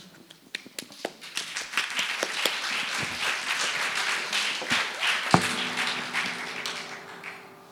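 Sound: round of applause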